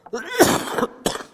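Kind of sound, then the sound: human body sound, cough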